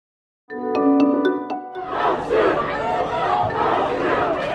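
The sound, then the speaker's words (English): A protest crowd cheers and shouts loudly in a dense, sustained roar, cheering the additional charges brought against Minneapolis police officers over the death of George Floyd. A steady tone with a few sharp rhythmic clicks comes just before it. “Protesters gathered in major cities across the country for another day yesterday, in many locations cheering the additional charges brought against Minneapolis police officers regarding the death of George Floyd.”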